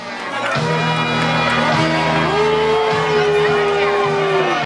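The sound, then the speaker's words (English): A large crowd roars with sustained booing and scattered shouts after someone yells "Beat it" at a man who has walked in, a dense, loud wall of voices that holds steady throughout, with low drawn-out jeers rising above the din. “Somebody yells, "Beat it," and then the crowd starts to boo.”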